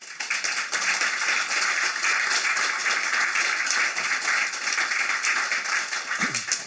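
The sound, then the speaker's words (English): Steady, sustained applause from an audience welcoming a guest, a dense wash of many hands clapping at an even loudness for several seconds before it begins to fade at the end. “I think we should ought to reassure him by starting the whole thing by saying, you're very welcome, we're going to applaud you.”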